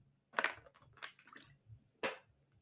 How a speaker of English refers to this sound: I don't got no shot, but y'all take a shot, man. I'm drinking water.